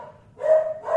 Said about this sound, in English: Maybe he's just barking when I talk. I think he is. He's barking in response to me talking.